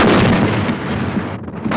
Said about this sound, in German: Oh Mann, keine Sekunde zu früh. Wenn die hier im Studio explodiert wäre. Es war nur eine sehr kleine Bombe, aber immerhin.